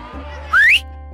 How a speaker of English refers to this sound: A loud, shrill whistle finally managed to shut everyone up.